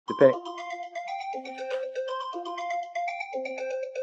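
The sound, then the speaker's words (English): A phone ringtone for an incoming call plays a stepping electronic melody of sustained, clear notes, steady, starting right after a short thump at the beginning. “I was so rudely interrupted by that phone call.”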